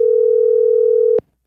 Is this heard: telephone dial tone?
yes